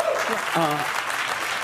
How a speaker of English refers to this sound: You notice Bill Maher's audience is now feeling a little bit more comfortable to, like, clap at certain things?